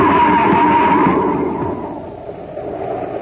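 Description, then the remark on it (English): A loud car skid screeches over a rough, roaring rumble for about a second as a car goes over the edge of a cliff on a foggy highway, then the squeal drops away and a dense, crashing roar slowly fades. No voices. “We're heading for the edge. Huh? We're going over the cliff!”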